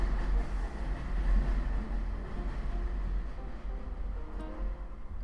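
vehicle, subway train passing

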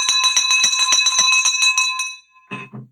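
signal or alarm, victory bell ringing

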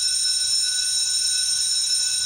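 signal or alarm, bell ringing

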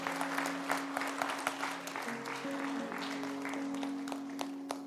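crowd, round of applause

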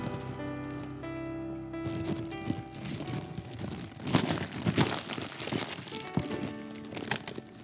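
household object, paper bag crinkling

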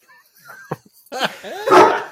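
animal, dog barking

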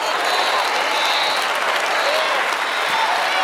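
crowd, audience clapping

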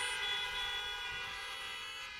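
vehicle, car horns honking

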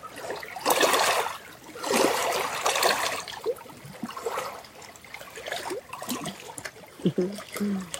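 nature, trickling water

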